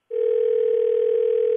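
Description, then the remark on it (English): A phone line rings out on the caller's end as a call is placed: one steady, unbroken electronic tone lasting about a second and a half, clear, with no voices. “We're going to have you call him back, kind of push his buttons a little bit, because I'm sure he's very upset right now, all right?”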